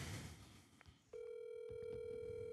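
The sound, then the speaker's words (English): A steady electronic ringing tone of an outgoing phone call kicks in after a second of muffled handling noise and holds unbroken to the end, fairly loud, with a few soft clicks and no talking. “Pick up the phone”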